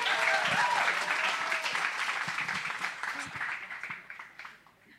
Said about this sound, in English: This is my wife, everybody. Give her a clap so she has confidence.